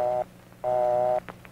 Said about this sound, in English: The busy signal, a buzz-buzz sound. When you hear this signal, hang up.